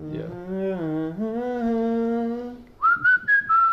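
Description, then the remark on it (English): A man hums a sustained, sliding melody from a film, then switches to several short, clear whistled notes that carry the tune forward in quick phrases. “And then he whistles.”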